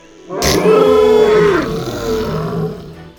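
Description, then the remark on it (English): A dinosaur floating on a tube in water lets out a satisfied roar after swallowing a fish: a deep, rumbling roar bursts in loudly and holds steady for about a second before trailing off into a lower, fading growl. A single call, with no talking. “let out a satisfied roar and wagged his tail, making the tube slowly rotate and gently bump off of a few mossy rocks.”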